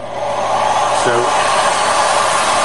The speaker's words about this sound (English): I'm going to just turn on the vacuum so you can see how it works